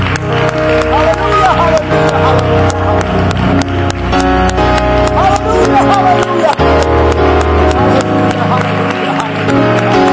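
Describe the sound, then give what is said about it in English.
A church audience claps their hands unto the Lord in a steady rhythm during worship, the sharp claps mixing with loud singing voices and music that carry on throughout. “This may be a little unusual for wherever you are, but just clap your hands unto the Lord. I'll clap with you.”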